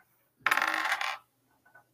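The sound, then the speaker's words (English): An eight-sided die (d8) is rolled for healing in a tabletop game, clattering and rattling across a hard tabletop for under a second, fairly loud, then stopping; a faint small tap follows shortly after. No voices are heard. “Okay, can you roll the heal yourself? Okay. Your D 8.”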